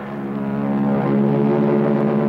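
A low, steady droning hum of Royal Canadian Air Force propeller aircraft engines, rich with layered tones, swelling slightly louder as the aircraft pass overhead towing a 10-ton maraschino cherry, with no voices.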